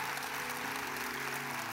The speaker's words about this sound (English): Oh, come on. Hey, listen. Y'all gonna clap louder than that for your team.